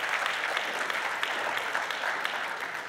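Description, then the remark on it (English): An audience applauds God during a worship service, a dense wash of many hands clapping at an even, sustained level for the whole stretch with no voices standing out. “Lord, we applaud you, we love you, we adore you, we worship you, we praise you, and we thank you.”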